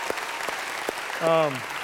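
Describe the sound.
A church crowd claps in a steady, dense round of applause for the senior pastor's leadership. A few sharper claps stand out, and a single voice briefly calls out over it near the end.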